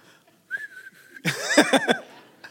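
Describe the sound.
Someone whistles to call a donkey: a steady held note, then a loud burst of rapid rising-and-falling whistled chirps, with no talking.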